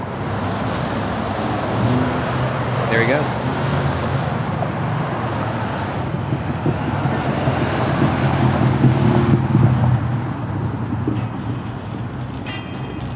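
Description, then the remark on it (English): A police motorcade of black SUVs with lights on, a van, armored NYPD trucks, an ambulance and many police cars rolls across the Brooklyn Bridge in a steady stream, taking a defendant to court, engines and tires rumbling loudly amid wind noise, with a brief spoken remark early on. “We've got black SUVs with the lights on, a van, armored NYPD trucks, an ambulance, tons of cop cars.”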